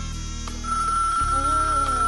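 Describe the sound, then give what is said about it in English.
A steady electronic tone sounds like a phone ringing on an outgoing call made during the Sunsplash Mix Show, starting shortly after a soft low hum and continuing unbroken to the end, clear, with no talking. “Yeah, we've been making some phone calls and make sure he's there with us.”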